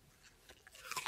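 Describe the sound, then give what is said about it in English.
Crisp crunching of a bite of raw potato being chewed, several quick wet bites in an uneven rhythm with no talking. “Chew away. Oh, done. Chewing as well.”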